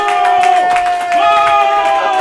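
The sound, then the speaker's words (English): Loud crowd noise fills the whole stretch, with clapping bursts and a steady high whistle or cheer ringing over it, as an audience applauds to welcome a guest onto a stage. “please give a warm welcoming applause to Scott Says”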